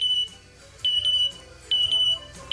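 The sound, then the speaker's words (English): A parrot named Jazz mimics a smoke detector, repeating short, piercing high-pitched beeps in a steady rhythm, roughly one burst every second, loud with a faint low rumble underneath. “That's his smoke detector impression. He copied the sound of a smoke detector.”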